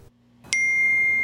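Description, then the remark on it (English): After a brief near-silence, a smartphone vibrates and an emergency alert from Taiwan's volcano early warning system, on its first test run, bursts in abruptly: a loud electronic tone that holds steady and piercing, with a low hum underneath. “The smartphone vibrates as an alert comes in.”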